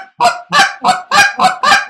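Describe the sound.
A handheld goose call, its tone changed by small movements of the caller's hands, sounds six loud, raspy honks in a quick, steady rhythm, with the pitch and tone shifting slightly between notes as if two different geese are calling.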